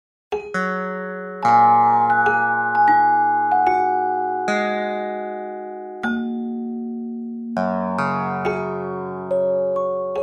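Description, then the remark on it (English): Wikipedia edits turned into music by a program from Stephen Laporte and Mahmoud Hashemi: bell tones for added information and plucked string notes for deletions sound at irregular moments, their clear pitches overlapping and ringing out slowly into a soft, shimmering musical wash. There is no speech. “Whenever someone adds information, you hear a bell. And when they delete something, you hear a string plucked.”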